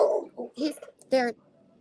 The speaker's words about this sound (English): Marley barking isn't an issue. Marley barking is a good thing. Keep going.